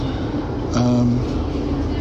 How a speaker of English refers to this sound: Going through Esher on the train past Sandown Park.